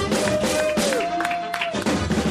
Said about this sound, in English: A nice round of applause for Aristotle.